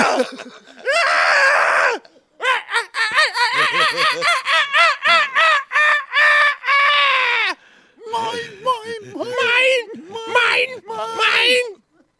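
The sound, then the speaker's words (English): A voice imitates seagull squawks: a long string of loud, shrill, rapid cries, breaking briefly and then resuming in choppy bursts. “Let's go fucking seagull.”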